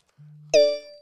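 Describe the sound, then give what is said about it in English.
A brief, odd phone notification: a low steady hum, then a bright ringing chime with shimmering overtones that fades out within about half a second. No one speaks. “I get different notifications start popping up and shit.”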